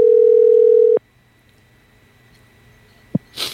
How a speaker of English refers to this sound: Hold on. Ringing phone.